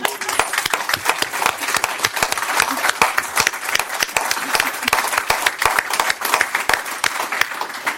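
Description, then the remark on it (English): An audience applauds steadily after a poetry reading, many hands clapping in a dense, sustained patter with sharp individual claps standing out throughout, fairly loud and even with no one speaking. “And it just strikes me that actually applause is a very therapeutic thing as well as a celebrational thing, because it helps us kind of get some of the emotions that these poems have stirred up”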